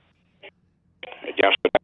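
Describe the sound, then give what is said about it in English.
Choppy, band-limited telephone voice cutting in and out, with brief bursts of sound separated by dropouts and a few short clipped fragments at the end. “Your phone's breaking up”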